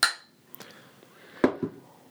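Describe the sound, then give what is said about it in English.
Glasses of beer clink together in a toast: one bright, ringing chime that quickly fades, followed a moment later by two duller knocks. No one speaks. “Cheers.”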